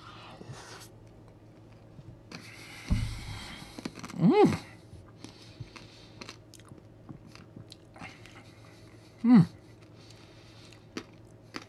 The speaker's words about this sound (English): Oh, that peppermint adds just the right crunch that you want.